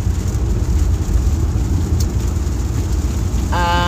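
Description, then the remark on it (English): Steady, dense hiss of heavy rain pouring down, loud with a deep rumbling low end, unbroken throughout; a brief tonal sound enters right at the end. “And in contrast, today is not as sunny or as bright. It is raining heavily.”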